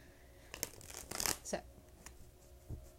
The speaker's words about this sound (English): I cannot guarantee that you will hear me shuffling the whole duration of this reading, but based off of faith, we will go from here. I am shuffling the Modern Witches Tarot. It's a beautiful, awesome modern deck